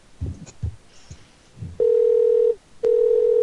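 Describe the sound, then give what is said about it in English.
An outgoing call rings on the line: two steady, loud electronic ring tones with a short gap between them, after a few soft clicks and rustles. “Pick up, lady. Hey, lady, pick up your phone.”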